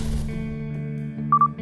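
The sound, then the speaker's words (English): Two quick, high electronic beeps sound near the end over a steady, buzzing hum: alarm code tones going off on a police and fire radio scanner. No one speaks. “When the alarm codes went off on the scanner during my first week, I felt exactly like my dad, rushing down the road as fast as you possibly can go to get there before anybody else.”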